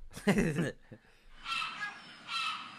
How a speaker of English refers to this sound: Ooh. Seagull. So we got pelican, seagull, penguin, and puffin. I love puffins, but it is a seagull.